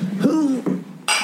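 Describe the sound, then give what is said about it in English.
A short vocal sound, like a murmured exclamation, is followed by a single bright clink of glasses knocking together in a toast, fairly loud, with a brief ringing tail. “That was a good clank.”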